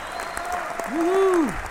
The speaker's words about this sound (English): I mean, round of applause for me missing that.